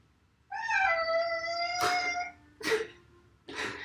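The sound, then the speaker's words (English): A person imitates a cat meowing: one long, drawn-out tonal meow, then two short, breathy, raspy bursts, fairly loud with no other talking. “We're going to do our two different cat sounds.”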